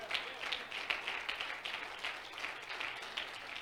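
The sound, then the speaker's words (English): A church audience standing and clapping their hands to the Lord in a steady, dense wash of overlapping claps, fairly soft, continuing throughout with a faint murmur of voices underneath. “We should stand to our feet and clap our hand to the Lord.”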